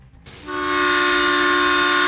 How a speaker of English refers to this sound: Train! Somebody say train!